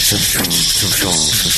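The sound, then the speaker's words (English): A voice imitates all eight mooring clamps hissing as they disengage: one loud, steady, breathy hiss with a buzzing voiced undertone, held for about a second and a half. “And all of a sudden, the mooring clamps just go... and disengage all eight of them.”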